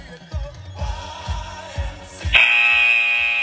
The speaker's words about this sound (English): So you've now got 15 seconds to go before you're in run number 2. So just wait for that buzzer and get ready to go.